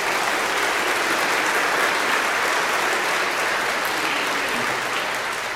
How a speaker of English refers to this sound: If we have any of those people here today who were your instructors, just raise your hand and let's give them a hand of applause for their work in doing that.